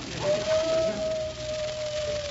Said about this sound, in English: My wife's calling me. It sounds like a wolf.